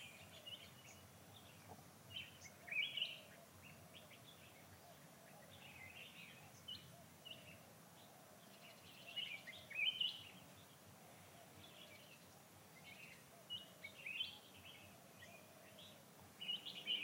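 Birds sing in short, high chirping bursts that recur every few seconds over a soft, steady background hush, with no talking.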